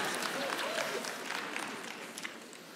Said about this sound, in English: And all the C's get degrees, just clap. Thank you. I appreciate that.